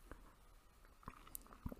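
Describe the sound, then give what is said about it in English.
A quiet sip of hot tea: soft wet mouth clicks and a small slurp, then a gulp near the end, with no one talking. “I was a little early to take a sip of that tea, wasn't it?”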